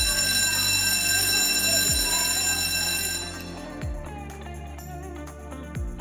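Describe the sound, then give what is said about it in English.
A loud electric school bell rings continuously for several seconds, a steady metallic buzzing clang with a droning hum beneath it, fading slightly toward the end. “Class is in session, as the intro told you, with the bell and everything. It's a school theme.”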